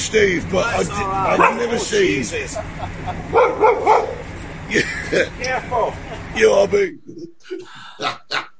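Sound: dog barking and yipping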